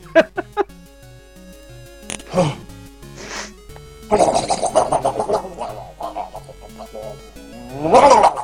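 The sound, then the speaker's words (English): A goat bleats several times: a few short calls at first, then longer, wavering, strained bleats that come in loud bursts, the last one especially harsh and rattling. “That is a goat, by the way.”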